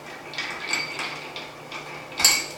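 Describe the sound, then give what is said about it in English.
A spoon stirs a drink, clinking lightly against the glass in a steady, repeated rhythm of soft metallic tinks, ending with one brighter, louder clink. No one speaks. “I'm going to give that a stir.”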